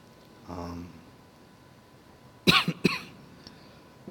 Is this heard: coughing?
yes